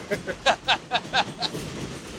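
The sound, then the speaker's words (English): An elevated train rattles past a sidewalk outside a patty shop with a quick series of rhythmic metallic clacks that fade into a steady rumbling wash of noise, loud. “I know it's noisy with the train”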